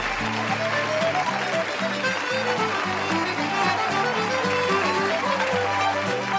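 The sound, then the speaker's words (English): A steady round of applause from a crowd, dense and continuous clapping throughout, with a low, rhythmic musical bass line playing underneath. “Round of applause to all of you, you clever swabs.”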